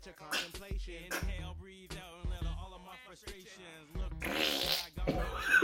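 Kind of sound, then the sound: human body sound, fart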